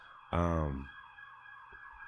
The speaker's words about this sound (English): Shout out to the sirens, baby. Off top, it always happens like that.